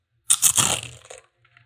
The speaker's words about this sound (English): I have white cheddar Cheez-Its. Want to hear the crunch?